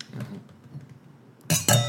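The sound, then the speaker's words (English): Glass mugs clink together in a toast: two loud, bright knocks in quick succession, each leaving a high ringing tone, following a stretch of soft low background murmur. “Our mugs are so loud.”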